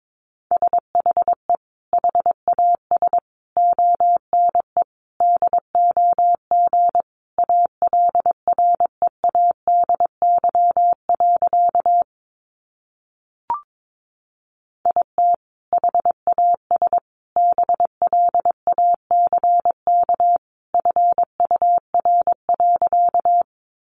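Morse code sent at about 22 words per minute: a single steady mid-pitched tone keyed in quick dots and dashes, with a brief silent pause and a tiny click midway.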